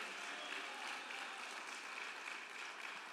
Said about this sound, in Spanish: Denle un fuerte aplauso al Señor con el corazón esta tarde.